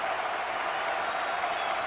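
A dense, steady roar of the Rutgers home crowd at the RAC arena, on their feet cheering and applauding at a basketball game, loud and continuous throughout with no pauses.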